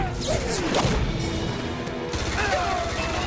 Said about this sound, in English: Oh! Big bang. Now, you said cannon nice before cannon appeared on screen.